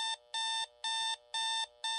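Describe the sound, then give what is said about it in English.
An alarm clock rings with loud, evenly spaced electronic beeps, about five bright bursts in quick steady rhythm, with no voices. “should we use an alarm?”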